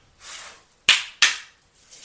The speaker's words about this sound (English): Wow. And these two cards fell out as I knocked them.